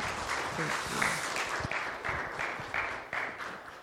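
A church audience at Missio applauds steadily during a morning service to welcome two speakers, many hands clapping in a dense, continuous wash of sound that stays fairly even in loudness throughout, with no voices standing out.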